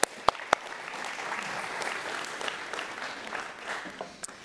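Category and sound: crowd, audience applause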